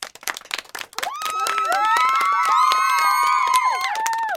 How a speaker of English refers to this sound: Maybe our sound person can insert some applause and cheers there. That maybe, would be awesome.